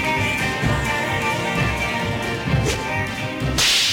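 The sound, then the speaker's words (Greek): A single sharp bullwhip crack snaps out near the end, loud, cutting over steady orchestral-sounding music that plays throughout. “So if you hear the crack of a bullwhip, just look up and see.”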